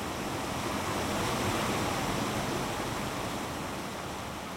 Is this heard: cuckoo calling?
no